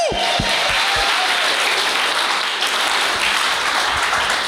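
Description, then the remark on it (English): A crowd applauds steadily for the performers who came up before the speaker, dense clapping at a loud, even level for several seconds, with a few scattered louder claps near the start. “Give another round of applause to everyone that came up before me.”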